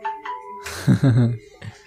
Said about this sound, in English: Now my smartphone is ringing. I'm sorry.